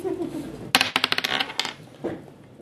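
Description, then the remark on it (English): Dice are rolled, clattering across a hard surface in a quick burst of sharp, bright clicks that tumble and slow before settling on a total of seven, followed by a brief low voice murmur. “Okay, make a roll.”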